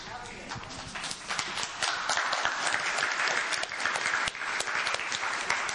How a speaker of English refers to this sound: If you're an African, you give that kind of a clap to like a local leader, he will not accept that.